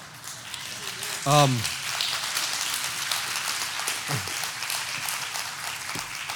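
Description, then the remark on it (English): Steady audience applause crackles throughout, a dense patter of many hands, with a brief loud whoop rising early and another short vocal call in the middle. “I know people that wouldn't clap for that, I really do.”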